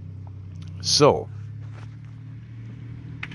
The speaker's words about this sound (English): As you know, we like to podcast in random locations. And you might hear some noise in the background as there's a car about to drive by.